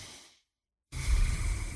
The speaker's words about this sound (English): I am breathing freely. Look at this.